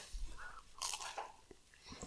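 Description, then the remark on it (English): Someone bites into a crunchy matcha treat and chews, with a sharp crisp crack followed by several softer, moist crunching and chewing sounds at a moderate, fairly quiet level. “All right, I think I'm going to try a pistachio. It's matcha.”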